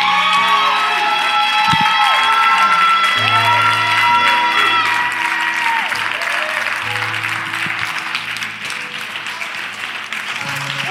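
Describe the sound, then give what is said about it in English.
An audience claps steadily and cheers loudly for about ten seconds to thank God, with whoops and shouts rising over dense applause while sustained organ or keyboard tones hum underneath. “Wow, can you just clap your hands and thank God?”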